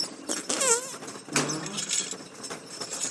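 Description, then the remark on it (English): A comical fart sound effect on a cheesy carnival ride that farts on its riders: a squeaky, wavering blast followed by a lower, rumbling burst, with a fizzy noisy background throughout. “So they get farted on, dude.”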